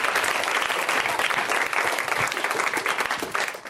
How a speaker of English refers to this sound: One more round of applause for Josh. So great.